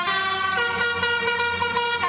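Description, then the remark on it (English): A loud car horn on a roadway plays a song tune, its brassy sustained blasts shifting pitch from note to note without pause. Nobody speaks. “it's the return of the Baby Shark theme song. Those honking horns are taking over the roadways.”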